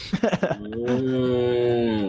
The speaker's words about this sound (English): I see the fucking cow.